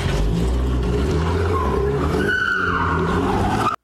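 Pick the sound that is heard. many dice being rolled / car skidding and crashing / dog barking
car skidding and crashing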